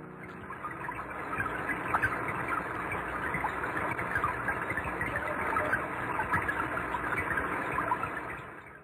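Rain recorded underwater: a dense, steady crackle of tiny pops and ticks scattered across a muffled wash, holding even loudness throughout with no voices.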